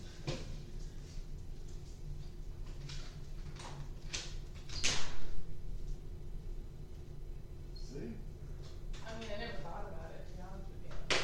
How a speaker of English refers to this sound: Go and open the door.